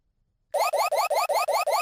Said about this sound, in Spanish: Es una alarma. ¿La puedes poner de nuevo?